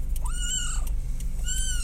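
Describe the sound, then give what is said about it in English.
A cat meows twice, a long rising-and-falling meow followed by a shorter one, clear over a low steady background hum. “Oh, we have another guest on the podcast. Yeah, a little Columbo.”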